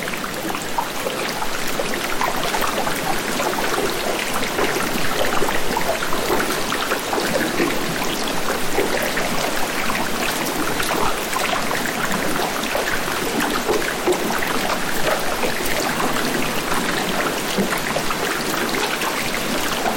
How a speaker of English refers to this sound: The other thing, too, is the sound of melt. And that can have a different inventory, whether you're hearing melt from a perspective of underwater, where you have the cavitation of bubbles, billions of bubbles popping.